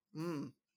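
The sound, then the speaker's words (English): A single short sneeze, a voiced burst with a breathy edge that cuts off abruptly, at moderate volume, with no talking around it. “Gesundheit.”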